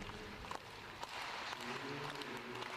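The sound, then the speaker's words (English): A crowd claps in a steady, dense patter, with a few sharper claps standing out and faint voices murmuring underneath, at moderate volume throughout. “They're clapping off.”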